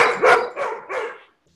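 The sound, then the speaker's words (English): Three sharp dog barks in quick succession, fairly loud, each a bright burst, then the sound stops abruptly into silence. No one speaks over them. “my dogs do this every time. They know when we're finishing up.”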